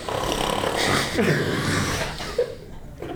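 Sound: person imitating snoring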